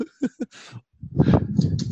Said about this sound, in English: My dog's choking on something. She's just like puking and shit.